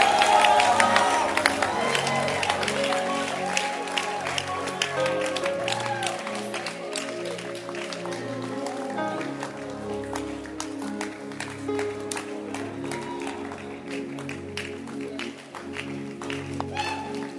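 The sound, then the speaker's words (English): An audience claps hands steadily for several seconds at the close of a sermon, a dense, continuous patter of many hands over a murmuring crowd and sustained tonal sound, holding fairly loud throughout. “Clap your hands and stand to your feet and let's close.”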